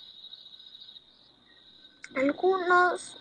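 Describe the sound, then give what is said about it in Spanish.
A steady, high-pitched cicada drone hums continuously at moderate volume, and near the end a child's voice speaks briefly over it. “Yo escucho todos los ruidos al mismo tiempo, como por ejemplo las chicharras, la vecina hablando, mi hermana hablando, esos truenos, todo.”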